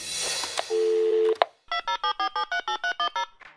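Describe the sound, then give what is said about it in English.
A telephone call to the Wow in the World line rings in a quick series of about ten evenly spaced electronic pulses, bright and steady. Before it, a short low hum and a burst of noise play, with no one talking. “Hi, thanks for calling Wow in the World. After the beep, get ready to record.”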